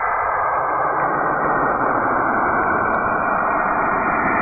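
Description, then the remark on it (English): A recording of Saturn's space sounds: a steady, rushing hiss of static with a low droning rumble underneath, unbroken and fairly loud for the whole stretch, with no voices. “Earth kind of sounds a little shitty, but Ebot, play Saturn.”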